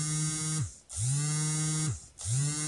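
A mobile phone buzzes on vibrate for an incoming call: three loud, low, raspy buzzing pulses, each about a second long, separated by short pauses. No voices are heard.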